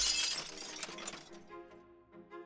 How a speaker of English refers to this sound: God, bother, I've knocked my drink over on the table and dropped my mat.